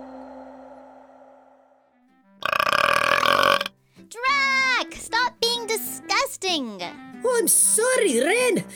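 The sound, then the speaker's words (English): A loud, raspy burp bursts out after a quiet low hum, followed by several seconds of squeaky, sing-song voiced vocal sounds rising and falling in pitch. “Now it's time to begin our journey of learning what makes burps and other bodily oddities.”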